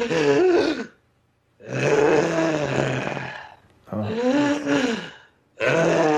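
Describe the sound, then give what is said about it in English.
A voice imitates a wheezing, asthmatic creature: four loud, rasping breaths, alternating drawn-out inhales and exhales with a throaty, strained rattle, separated by brief pauses. “It sounded like it had asthma.”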